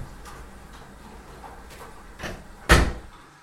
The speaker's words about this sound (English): The door shuts.